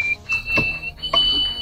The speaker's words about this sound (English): A woman in Canada discovered a special talent when she was 7 years old. She can whistle through her nose. And this is pretty remarkable.